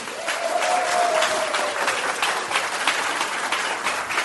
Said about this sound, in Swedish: Så nu vill jag att ni ger en väldigt härlig och stark applåd